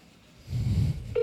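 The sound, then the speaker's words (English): A muffled low rumble, like a phone being handled, gives way to the start of a clear electronic tone from a telephone line at the very end, as a call is placed to the Lagunitas Brewing Company taproom number. “I couldn't believe someone answered the phone.”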